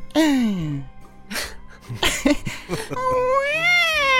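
A woman crying at a front door wails and sobs in drawn-out, sliding cries that sound much like a cat's meowing, with a few breathy sniffs between, fairly loud with no other talk.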